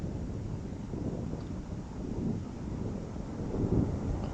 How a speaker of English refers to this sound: Aeroplane passing by.